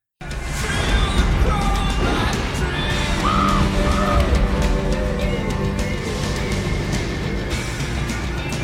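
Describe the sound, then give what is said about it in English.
In a scene from the film The Crow, a crow caws a couple of times, short harsh calls rising out of a steady, dense wash of rumbling thunder from a storm that fills the whole recording. “And then also the Crow just occasionally cawing.”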